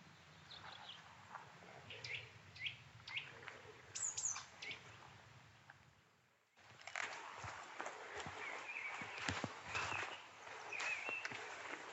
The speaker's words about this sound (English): They've got so many different calls there. There's that nuthatch again.